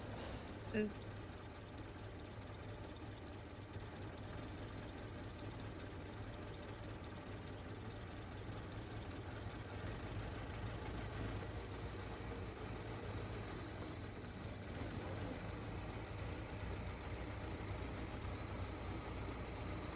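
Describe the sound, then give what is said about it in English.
A car engine idles with a steady, low rumbling drone that holds constant for the whole stretch, with faint muffled voices occasionally underneath, as the car is about to head down to the docks. “Jump back in the car and head down to the docks.”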